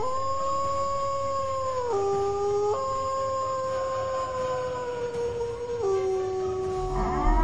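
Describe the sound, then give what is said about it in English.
A long, sustained wolf howl imitated by a human voice, loud, holding a steady tone that shifts pitch in a few abrupt steps over about seven seconds, with no talking over it. “Let me get another wolf howl from everybody that's in the chat box, man.”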